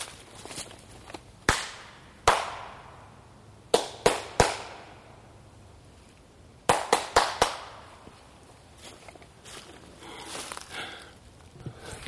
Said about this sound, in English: So clap your frickin' hands. And stop fussing. Okay, check this out. I'm happy and I know it, so I'm going to clap my hands.